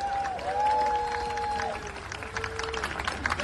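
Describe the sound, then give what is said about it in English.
An audience at an event in support of Assange applauds journalist Dan Cohen with steady, dense clapping for several seconds, mixed with crowd cheering and a sustained whistle-like tone near the start. “So everybody, please give it up for Dan Cohen.”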